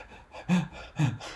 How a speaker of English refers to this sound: And you hear her breathing heavily.